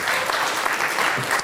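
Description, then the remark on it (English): An audience gives Mr. Brown a round of applause at the end of a formal session recorded by University of California Television, the dense patter of many hands sustained evenly throughout at a moderate level, with no one speaking over it. “So let's give Mr. Brown a round of applause.”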